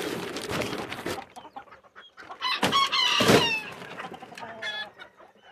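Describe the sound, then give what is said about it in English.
Several chickens cluck and squawk, a busy overlapping flurry of calls with a couple of louder, harsher outbursts in the middle, no talking. “Got some babies. How you doing, boy? I got a down chicken.”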